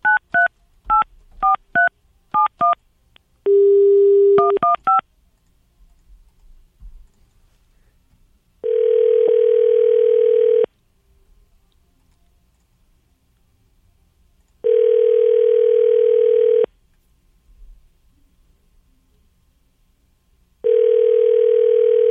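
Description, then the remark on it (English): A quick run of touch-tone keypad beeps as someone dials a man's phone, then the ringback tone sounds in steady two-second bursts with long pauses between, repeating three times with nobody answering. No voices. “Literally the first time he hasn't picked up our he phone.”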